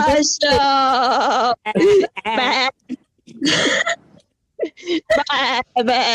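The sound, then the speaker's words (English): People imitate sheep with wavering, vibrato "baa" bleats in several loud bursts separated by short pauses, the voices overlapping playfully at times. “Basically, we are sheep already.”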